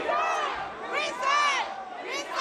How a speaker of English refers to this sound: A crowd of mostly African-American and Latino protesters packed the chamber and angrily called for the resignations of the three Latino members who were caught on tape making racist and crude comments.